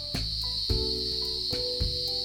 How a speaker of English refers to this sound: The sound of cicadas.